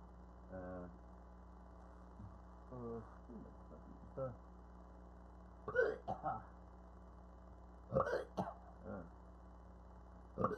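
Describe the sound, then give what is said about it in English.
A string of voiced burps, about five or six spread across the stretch, some drawn out and throaty, others short and abrupt, over a steady low background hum. “The burping.”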